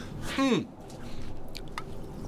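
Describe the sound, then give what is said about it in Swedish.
Wet mouth sounds of someone drinking water after tasting something: a short voiced gulp or groan, then soft swallowing and a couple of quiet squishy clicks, with no talking. “Jag måste i med vatten.”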